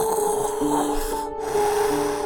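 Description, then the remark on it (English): A continuous wet, squishing rub lasting a couple of seconds, with a steady low hum running underneath and a brief dip midway; no one speaks. “You hear the squishing sound and”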